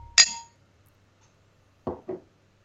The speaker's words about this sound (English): Shall we cheers and try this sucker? Absolutely. And clink.